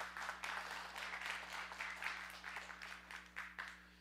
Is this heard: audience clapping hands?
yes